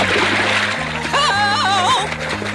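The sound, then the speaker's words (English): A splash as someone slips on a puddle and slides into a pool, a burst of churning water near the start, followed by bouncy cartoon-style music with a warbling, wobbling tone gliding over it. “runs into the puddle and tosses all the little balls and slips on the puddle and slides into the pool.”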